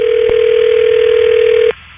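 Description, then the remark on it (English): A steady, low telephone dial tone hums over a thin phone line while dialing out on a call, broken by a sharp click early on and cut off by another click, leaving faint line hiss. “All right, here, I'm dialing out.”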